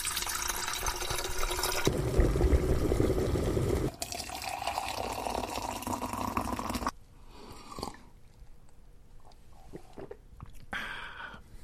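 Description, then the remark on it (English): Water runs steadily into a kettle being filled to make tea, for about seven seconds, its rushing tone shifting as the vessel fills, followed by quieter clinks and handling sounds. “So, we will rejoin you all after we steep our tea. Let's put the kettle on then.”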